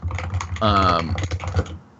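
Quick, irregular clatter of keys on a computer keyboard as someone updates a Slack workspace, briefly interrupted midway by a short sustained voiced sound before the tapping resumes.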